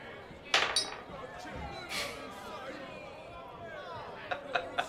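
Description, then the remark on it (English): Dice for a strength check clatter against glass in a sharp, bright burst and land on a one, followed later by a few quick light clicks, with murmuring voices and soft chuckles running underneath. “It hit the glass, and it's a one.”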